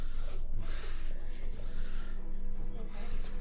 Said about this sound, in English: Well, you are breathing directly into the mic. Oh my god, you're breathing directly into the mic.